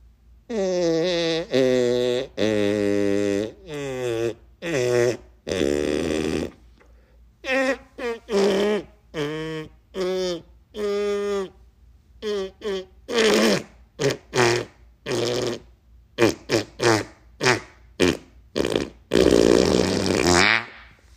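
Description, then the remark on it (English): A long run of loud fart noises made with a fart instrument, a novelty noisemaker, some drawn-out and buzzing, others short sputtering bursts, coming in uneven clusters with brief gaps between them and no talking. “And with that, let's hear some farts. Let me get my fart instrument ready.”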